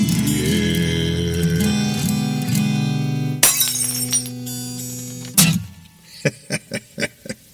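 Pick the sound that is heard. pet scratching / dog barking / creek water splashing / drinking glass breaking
drinking glass breaking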